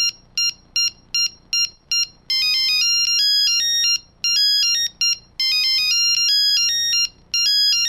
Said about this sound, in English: My phone ringing. I can't find my phone. Where the phone? I hear the phone ringing. Where the phone?